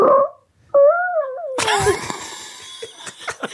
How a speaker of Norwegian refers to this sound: Så her er fis innsender nummer tre.